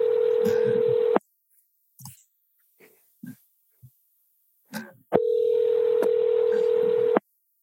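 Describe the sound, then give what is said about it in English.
Telephone dialing tones while placing a phone call: two long, steady electronic tones, each about two seconds, separated by a pause of faint soft noises. Clear and fairly loud, with no one talking. “I'm excited to get her on the phone.”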